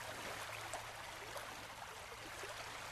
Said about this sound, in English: You hear birds chirping in the distance and the soothing noise of a bubbling brook, water splashing from rocks to rocks in the stream bed.